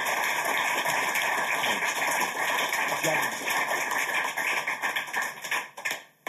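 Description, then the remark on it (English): A crowd breaks into steady, dense applause, many hands clapping at once for several seconds before the clapping thins and fades out near the end. “So, let's have a thunderous round of applause.”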